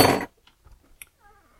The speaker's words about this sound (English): So we're going to take the spoon and just kind of blend all that together.